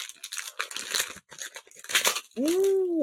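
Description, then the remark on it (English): Eco-friendly brown paper wrapping is torn open in a series of crackly, ripping bursts with short pauses, followed at the end by a brief exclaiming voice. “They're all wrapped in nice non-capitalist brown paper.”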